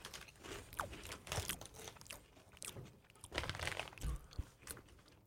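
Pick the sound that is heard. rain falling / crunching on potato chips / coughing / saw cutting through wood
crunching on potato chips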